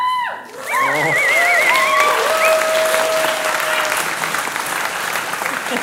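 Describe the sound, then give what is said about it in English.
Loud, steady audience applause welcoming a guest who comes up to press a big red button. It starts abruptly and carries on for several seconds, with whoops and rising cheers mixed in during the first half before the clapping evens out. “All right, so if you give a huge round of applause, we've got our wonderful guest to come and press our big old red button.”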